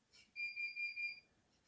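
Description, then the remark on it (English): An alarm sounds in four quick, even high-pitched electronic beeps that run together into a pulsing tone for about a second, with no voices over it. “That was some alarm going off that I've generated by admitting I've got a season ticket.”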